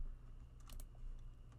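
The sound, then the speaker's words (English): Several quick, crisp keystrokes tap on a computer keyboard in an irregular burst as someone inputs a zip code, fairly quiet over a low steady hum, with no talking. “Let me input my zip code.”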